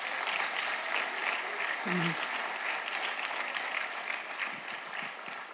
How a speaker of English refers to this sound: Clap your hands for the Lord tonight.